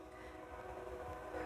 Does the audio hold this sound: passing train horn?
yes